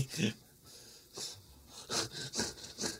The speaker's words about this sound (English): That's how I breathe. I got breathing problems. I'm like a pug.